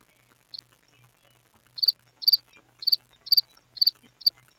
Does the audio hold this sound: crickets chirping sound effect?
yes